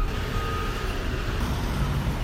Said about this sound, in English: I'm going to pause right now and get on a bus.